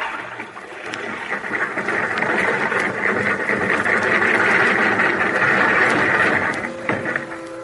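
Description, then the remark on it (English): A crane boom worked by an engineer at a barge lowers a car that had been in the river, with a steady, loud mechanical drone, an engine-like rumble with a whining hum layered over it and occasional faint clanks. No one speaks. “Tell him to lower the car, Florio. Hey, engineer, lower the boom.”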